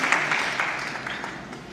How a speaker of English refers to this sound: Can I have a round of applause for my volunteers?